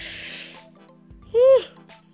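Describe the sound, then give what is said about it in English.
A single yawn: a long breathy intake, then a short, loud, voiced groan that rises and falls in pitch before trailing off into quiet breath. “Oh my god, I keep yawning.”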